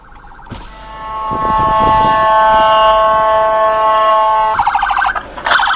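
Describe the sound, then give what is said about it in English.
An ambulance siren blares as the ambulance tries to get through traffic, starting with rapid pulsing bursts, shifting into a long, steady, piercing tone, then pulsing again, with low traffic rumble underneath and no talking. “But anyway, this ambulance is trying to get over through traffic.”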